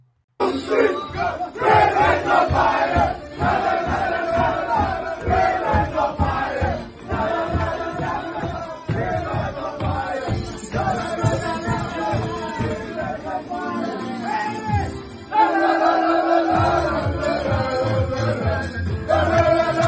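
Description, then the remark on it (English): A group of voices, the Valor team celebrating in their locker room on Saturday, cheers and chants loudly and continuously, a dense crowd roar with rhythmic shouted bursts and whoops that barely dips for about twenty seconds. “Great cheer, great celebration.”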